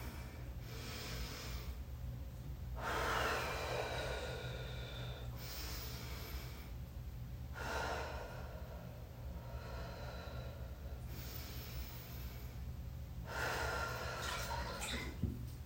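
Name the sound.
three deep breaths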